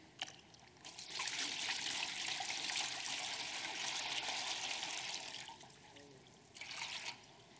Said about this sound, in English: Now, I have a pitcher of water. In all reality, The pitcher of water is like the ocean. It's never ending and forever filling you. So watch this.